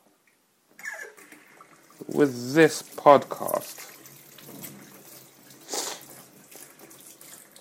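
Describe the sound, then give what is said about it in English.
A kitchen tap runs steadily with a continuous watery hiss as dishes, including a bowl and cutlery, are washed, while a person talks over the flowing water. “whenever I have a chore to do, like just washing the dishes, as I'm doing that, it can take me twice as long as it should, because I'll keep interrupting myself to have these conversations with myself.”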